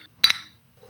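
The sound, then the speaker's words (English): A single bright, crisp clink of drinks, one a 24-ounce Old English malt liquor, knocked together in a toast, with a short ringing tail that fades quickly into quiet, and faint murmuring at the very end. “Hold on, cheers, yo.”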